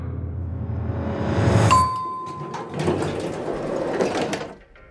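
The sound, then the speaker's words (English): A single clear elevator chime rings out over a low rumble as two men walk into an empty elevator, then the doors slide shut with a steady mechanical rush that stops abruptly. Fairly loud, with no voices. “Two men walk into an empty elevator, and the doors close.”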